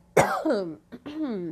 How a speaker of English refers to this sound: I got a cough.